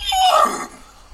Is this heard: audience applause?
no